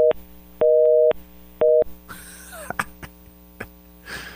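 A telephone busy signal after a caller was accidentally hung up on: three loud, steady electronic tone bursts of uneven length with short gaps, followed by clicks, rustling and faint line noise as the tone stops.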